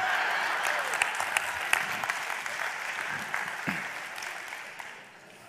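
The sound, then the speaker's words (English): Steady applause from an audience, a dense wash of many hands clapping at a fairly even level with a few sharper claps standing out, tapering off toward the end. “My daughter-in-law said, you're the only one that can say moron and everybody claps.”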